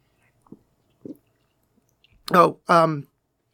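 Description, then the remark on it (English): Two soft, brief sips from a drink, spaced about half a second apart in near silence, followed by a louder pair of drawn-out voiced sounds. “I'm gonna take a sip.”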